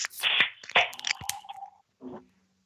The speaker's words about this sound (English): Man, I love the sound of opening up a nitro. Yeah. I just like the sound of a can opening.